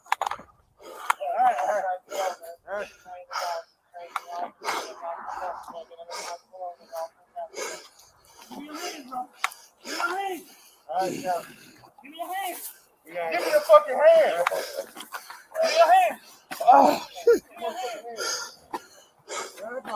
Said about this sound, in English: Now, the officer, obviously, so they spray him, and the officer, you could hear the officer panting and walking around. He obviously caught the pepper spray as well, which is why he's kind of walking away.